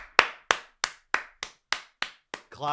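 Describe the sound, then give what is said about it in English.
Eight sharp hand claps follow the introduction of a talk show co-host, landing in a steady, even rhythm, each crisp and bright with a quick decay, then a voice cuts in right after the last clap. “Clap.”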